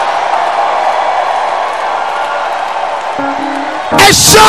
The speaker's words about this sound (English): Lift up your voice, clap your hands, and give the Lord a shout.